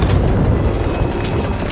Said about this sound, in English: He'd lost control of some heavy coal trucks and they were pushing him along the track. Percy! Then Percy and his coal trucks came off the tracks.